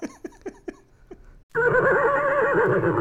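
A horse gives a string of short, sharp snorting bursts, pauses briefly, then breaks into a loud, sustained whinny with a shaky, wavering pitch that carries to the end.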